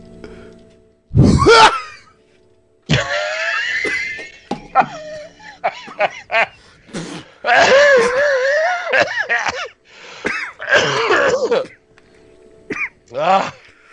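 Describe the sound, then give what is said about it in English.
A coughing fit: a sharp, harsh burst followed by a long run of strained coughs, groans and hacking vocal sounds that stop and start over several seconds. “cough, kick it off.”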